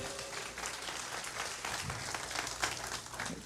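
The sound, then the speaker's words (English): An audience at a church service breaks into steady applause for the worship team, a dense wash of many hands clapping at a fairly even level for several seconds, with a few sharper claps standing out. “Hey, can we give this worship team a round of applause?”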